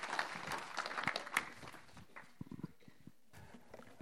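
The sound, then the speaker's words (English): An audience breaks into applause for a speaker, a dense crackle of many clapping hands that thins out after a couple of seconds into scattered, fading claps. “Let's give Julian a huge round of applause.”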